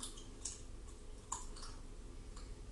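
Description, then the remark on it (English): Wet, sticky chewing of honeycomb for ASMR: quiet, irregular smacks and clicks every half second or so, with faint squishy crackles in between and no talking. “I got some honeycomb right here. Eat that honeycomb.”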